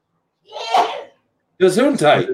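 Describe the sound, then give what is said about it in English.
A single loud sneeze from a person with allergies bursts out, then after a short pause someone speaks briefly. “Gesundheit.”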